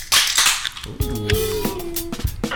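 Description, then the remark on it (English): A beer can cracks open with a sharp pop and a burst of fizzing hiss, followed by another crisp snap and a faint, steady tonal hum underneath. “Let's crack it open.”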